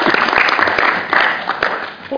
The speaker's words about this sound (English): Okay. Let's give them a little round of applause.